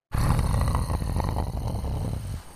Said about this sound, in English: This like sort of deep, bassy growl of something large. Can I tell what that might be? It's an animal of some sort, it sounds like.